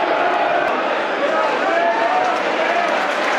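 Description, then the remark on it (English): A large football stadium crowd in South Bermondsey applauding and murmuring on a cold, wet night in incessant rain, a steady wash of clapping and voices that holds at an even level throughout without any clear peaks. “You can hear the applause, 65 minutes.”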